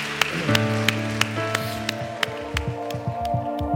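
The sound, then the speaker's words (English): Steady, evenly spaced claps ring out over sustained musical tones, a church audience clapping along in rhythm for three people who raised their hands after a prayer to Jesus. The applause is moderately loud and has no voices over it. “Can we give these three individuals that raised their hand a huge round of applause?”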